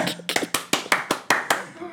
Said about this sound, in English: Let's applaud this for a second.